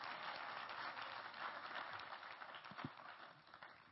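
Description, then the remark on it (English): A crowd claps steadily for several seconds in praise to the Lord, a dense, continuous patter of many hands, with no one speaking over it. “Let's clap our hands to the Lord and give Him praise.”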